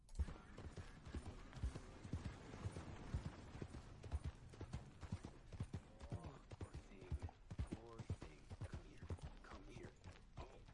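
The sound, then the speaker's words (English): Horse hooves clip-clop steadily along a muddy road, a continuous run of distinct footfalls over a faint background rumble, lasting throughout. “he's just walking down a mud road and there's a thing coming towards him.”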